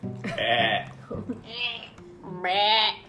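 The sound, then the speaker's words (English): A person imitates a goat, letting out three wavering, nasal bleats in quick succession, each loud, with short breathy pauses between them. “You can't, I'm half goat.”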